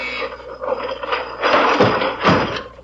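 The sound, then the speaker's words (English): Furniture, including chairs with a person sitting in one, retracts into a wall after a button is pushed, with a steady mechanical grinding and whirring, rising into two louder clattering surges near the end, like gears and ratchets working. No voices. “The furniture went right back into the wall.”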